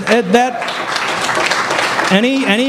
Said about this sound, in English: Any applause is not for me. It goes for the troops that serve.